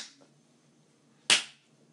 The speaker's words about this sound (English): Clap. Clap.